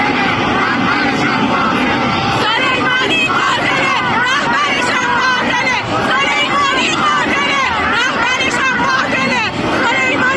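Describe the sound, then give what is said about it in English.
A large crowd of protesters in Iran shouts and chants together, a dense roar of many overlapping voices sustained throughout, loud, with rising and falling yells over constant babble. “This is these people, and look at what they're just shouting.”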